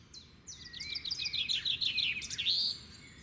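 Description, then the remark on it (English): Outdoor birds chirp in a quick, busy run of high tweets and short trills for a few seconds, clear over a soft, steady background hum, with no talking. “Chicagoan Mary Cordes has seen canary yellow finches, red fiery cardinals, a parade of big bossy blue jays.”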